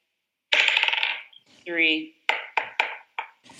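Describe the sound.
A quick clattering rattle of a d20 die, rolled twice for a spell at disadvantage in a tabletop game, a short voiced sound, then four or five sharp, bright clacks in fast succession as the dice bounce and settle on a table.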